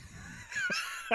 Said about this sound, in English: I haven't had a cough in fucking years, and you just made me cough like that hard.